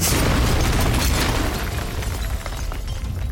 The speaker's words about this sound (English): 30 seconds later, a second bomb ignited on the roof, sending more debris into the kitchen area.